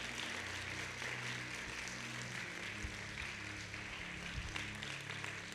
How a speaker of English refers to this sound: Clap your hands if you receive that in the name of Jesus.